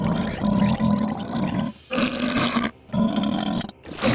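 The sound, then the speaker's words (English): Four loud, distorted creature roars made from recorded human belches processed with distortion for the video game Metroid Prime, each a rough, gravelly growl with a low buzzing rumble and harsh hiss, separated by brief gaps of silence. “He ended up using 4 of those belches in the final game, after using some distortions, of course.”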